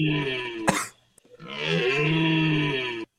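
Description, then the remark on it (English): A single voice imitates an awooga horn: a short, strained honking note, a brief pause, then a longer, loud, buzzy tone that swoops upward in pitch before cutting off. “I was trying to do like the awooga sound.”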